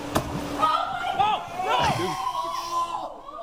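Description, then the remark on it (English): A single sharp, wet smack right at the start as a fish slams into a man and knocks him out, followed by excited voices and shouting that carry on over background noise. “How the fuck you let a fish knock you out?”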